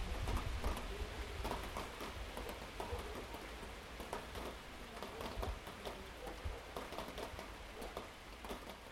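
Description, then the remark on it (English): Steady cold rain patters on November 16th, around 11:30 to midnight, in Bolson, Patagonia, for the whole stretch: a dense hiss broken by sharper individual drops striking a surface, with no voices. “It's cold and rainy.”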